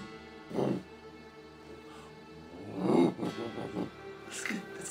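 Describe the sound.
A man's voice imitates an orangutan, a short hoot followed by a louder, drawn-out huffing vocalization with rising and falling pitch, a bit breathy.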